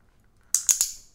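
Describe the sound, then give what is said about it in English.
Three crisp mouth clicks in quick succession, fairly loud, each a sharp snap with a short bright tail, with quiet before and after and no talking. “I haven't clicked in so long.”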